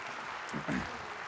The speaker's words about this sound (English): Y'all give him just a huge round of applause.